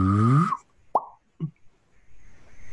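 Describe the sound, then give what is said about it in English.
An email arrival notification sound heard in an office: a loud, half-second tone sweeping downward in pitch, followed by two quick, hollow plopping blips, then quiet hiss. “Does that sound... Of arriving like email?”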